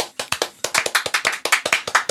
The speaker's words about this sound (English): So now we can bring ourselves out with an applause. Oh yeah, we're clap.